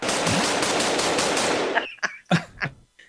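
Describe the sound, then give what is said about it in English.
A machine gun sound effect: a dense, loud, rattling stream of rapid automatic fire for almost two seconds, followed by a handful of separate sharp bursts with short gaps between them. “Oh, I thought like you're going to like scream it yourself right now and then shoot an actual gun.”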